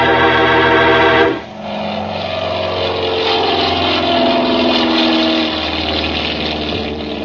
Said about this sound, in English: We went out onto the field and climbed into the plane. Then Ayers gunned the motor, and we were taking off.